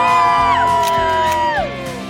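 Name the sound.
crowd cheering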